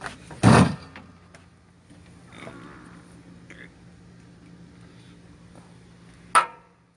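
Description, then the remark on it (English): A dropped cigarette hits the floor with a loud, harsh thump and scrape, then faint rustling over a low steady hum, and a second sharp knock comes near the end. “That abrasive noise brought to you by dropping your cigarette.”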